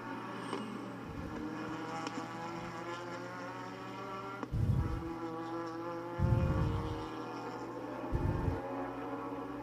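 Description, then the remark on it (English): Race car engines, including the white number 99 car and the yellow-and-black number 11 car running first and second, roar steadily with harmonic whine, swelling in a few low bursts as they sweep through the dog leg corner, continuous with no talking. “All right, there they are going through the dog leg.”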